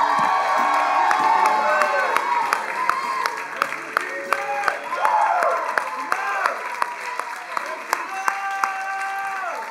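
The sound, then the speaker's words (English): A church audience bursts into a sustained round of applause and cheering for Jesus, dense clapping mixed with whoops and shouting voices, loud and steady for the full stretch. “How about we give Jesus a round of applause?”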